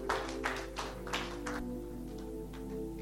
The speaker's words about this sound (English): Oh, you can clap better than that.